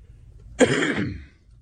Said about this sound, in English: Are you going to cough up a lung today? Maybe. You're struggling, aren't you? Hey, Dad. No, I'm actually not that bad. This is nothing compared to some of my past sicknesses. We got to get you a cough button.